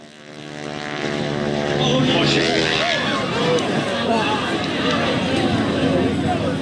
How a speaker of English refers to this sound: The plane drops out of the sky, slams into the ground, and immediately explodes in a fireball. A wheel flies up in the air.